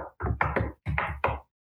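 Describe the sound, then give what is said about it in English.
A voice imitates horse hooves clopping: six hollow, knocking clops in two quick groups of three, moderately loud, with a short pause between the groups and no other talking. “Those are horses clopping.”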